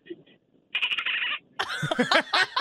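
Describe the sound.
A woman imitates a dolphin: a brief buzzing, clicky squeal, then a burst of high, warbling whistles and squeaks, fairly loud and without other talk.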